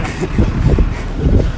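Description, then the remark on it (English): Road traffic rumbles loudly and steadily, heard while running alongside the moving cars, a deep wash of engine and tyre noise with gusty wind buffeting, swelling slightly in waves; faint indistinct murmurs blend into the noise. “Keeping up with traffic. Yeah, we're actually running with the cars.”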